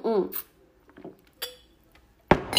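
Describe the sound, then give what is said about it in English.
Glass clinks while water is fetched: a few bright, ringing taps spaced apart, the last one sharpest and loudest, after a short murmured vocal sound at the start. “Let me get some water.”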